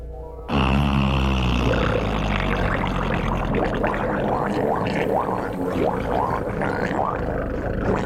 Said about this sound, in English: This highly sophisticated submarine recording, made in the humpback's favorite feeding grounds off Baja California